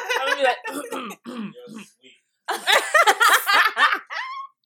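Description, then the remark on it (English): A voice imitates the stifled cough you try to hold in after coughing too much in class: a string of short muffled bursts through closed lips, a brief pause, then a louder strained, sputtering burst. “You know that cough you do, like, when you cough too much in class, you try to hold it in.”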